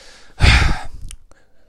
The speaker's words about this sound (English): Let me take a sip of my Monster for this one, car.